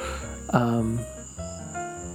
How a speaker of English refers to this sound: On the plus side, it's getting really close to fall. I'm outside. You can probably hear the cicadas. You've probably heard the cicadas this entire podcast,